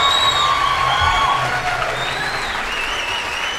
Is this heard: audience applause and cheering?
yes